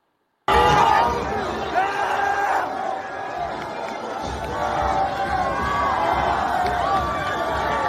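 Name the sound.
crowd cheering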